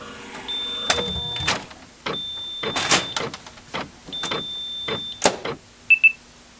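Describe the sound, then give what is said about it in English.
A fax machine runs in three clattering, whirring bursts, each under a steady high electronic tone, then finishes with a short pair of sharp beeps. No one speaks. “By the way, have you seen the fax machine?”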